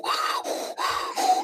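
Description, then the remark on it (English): A voice imitates the heavy breathing and grunting of a weightlifter seen in a video: four forceful, breathy, strained bursts in quick succession, loud, with no other talk. “So I'm watching this video and I'm loving the fact that this weightlifter Looks like Richard Stein is literally doing the breathing in and out, going.”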